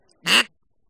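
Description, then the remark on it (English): A single short, loud quack from a duck call, imitating a mallard hen. It is raspy and nasal, lasts about a quarter second, and is surrounded by silence. “So that's a duck quacking, right? A mallard hen.”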